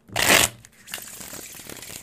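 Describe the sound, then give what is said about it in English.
A deck of tarot cards is shuffled: a loud, crisp riffle burst at the start, then a softer, steady papery shuffling that continues to the end, with no one speaking. “Give you guys some shuffle ASMR.”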